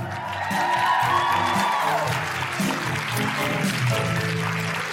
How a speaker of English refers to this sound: Then welcome, welcome, welcome to the Guilty Feminist Canberra! Can I have a big round of applause for those phenomenal women that you will be seeing a lot more of later?